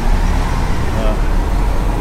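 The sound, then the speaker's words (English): Steady, dense traffic roar on a bus platform in New York City, a constant low rumble of passing vehicles with a faint hum of voices mixed in, loud and unbroken throughout. “All right, stepping out into New York City here. Well, at least onto the platform.”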